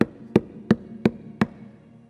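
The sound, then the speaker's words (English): Five loud, evenly paced knocks on a front door at night, each a sharp rap with a hollow, low thud, heard on their own with no voices and a brief fading ring afterward. “That evening, after he retired for the night, there came a loud knocking at the front door.”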